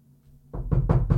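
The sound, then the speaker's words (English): Four quick knocks on a door in an even, steady rhythm, fairly loud, following a brief moment of near silence. “You know, you literally have to knock on the door every single day.”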